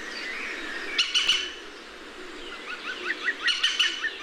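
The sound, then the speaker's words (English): A green woodpecker gives its laughing call, known as the yaffle, a quick run of ringing notes in a steady rhythm, clear, preceded by a couple of sharper calls over quiet outdoor background. “And green woodpeckers like churchyards because of their old meadow-like nature with lots of ants.”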